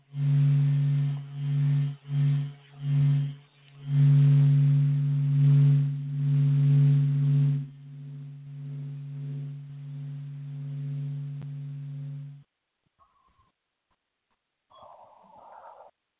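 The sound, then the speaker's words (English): Radio waves from the interaction of the solar wind with planetary magnetic fields and trapped radiation belts, turned into sound: a steady low droning tone with a harmonic above it, pulsing in choppy bursts with hissy static, then holding smooth before cutting out, followed by a brief faint warble. “And you get all of these extraordinary sounds, which in the largest sense are absolutely real. If you could hear radio waves.”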